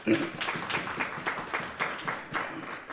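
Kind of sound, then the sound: crowd, audience applause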